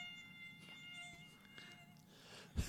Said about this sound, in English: Must be those stupid mosquitoes getting in here.